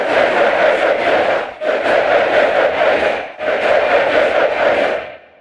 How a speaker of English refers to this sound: Then they combine the two so that a few Zoom recordings becomes a stadium full of angry soccer fans.